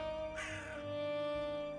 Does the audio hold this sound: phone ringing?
no